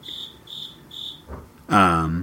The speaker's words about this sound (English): Yeah, it's the cricket, man. Takes away your thoughts.